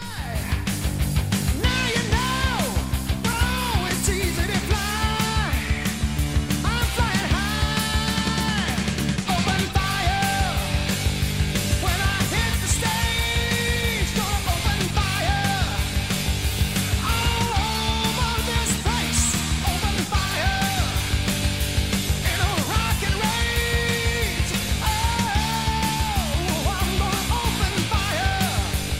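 A loud, driving heavy metal rock song with distorted electric guitars, pounding drums and a wailing, high-pitched male vocal line, sustained at full volume throughout without any pause.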